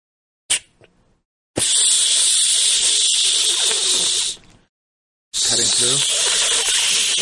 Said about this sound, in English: Cutting through the door. You hear that sound?